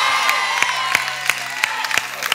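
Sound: audience clapping hands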